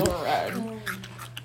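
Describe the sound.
Crunchy chewing of a juicy spicy pickle: a brief voiced murmur at the start, then a few crisp, wet crunches at an uneven pace, loud.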